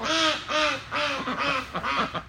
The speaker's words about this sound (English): the chickens are like, yeah!